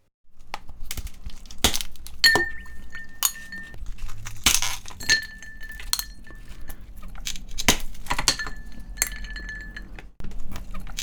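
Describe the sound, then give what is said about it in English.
Ice cubes crack and pop free from a tray, then clink and rattle as they drop one after another into a glass, with bright ringing tones between sharp knocks and no voices. “An intriguing sound, which we worked out in the end, was ice cubes being popped out and dropped into a glass.”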